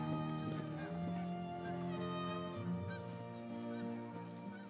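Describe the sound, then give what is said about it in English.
A flock of geese flying north honks continuously overhead above a golf course on a 50-degree day, many overlapping nasal calls forming a dense, steady chorus at moderate loudness with no voices. “Getting that awesome goose coverage? Geese coverage?”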